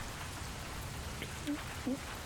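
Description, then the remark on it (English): Steady rain falls throughout, a dense even hiss with no breaks, and a couple of brief faint tonal chirps surface near the end. “And now there are the four of you on the hilltop in the rain.”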